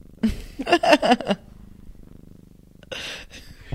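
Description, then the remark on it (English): A male pet cat purrs, a soft, steady, low rumbling pulse that continues after a brief burst of louder, higher sounds at the start, with a breathy rustle near the end. “Your kitty is purring. Do you hear it?”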